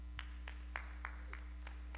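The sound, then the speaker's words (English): A few people clap sparsely for newlyweds, about seven faint, sharp claps at an uneven pace, over a steady low electrical hum with no talking. “I didn't say if you want to be a newlywed, clap.”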